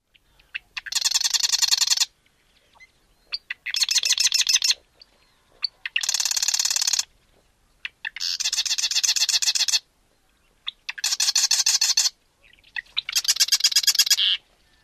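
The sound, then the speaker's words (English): A marsh bird repeats a rattling, typewriter-like trill six times, each burst lasting about a second with short pauses between, loud with no talking. “Other descriptions are a typewriter or stock ticker, or even a sewing machine.”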